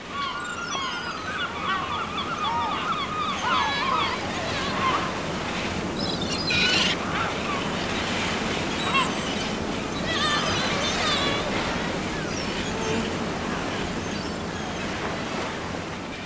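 Steady roar of surf and gusting wind fills the whole stretch, a broad constant wash with occasional bird cries and faint voices rising briefly above it.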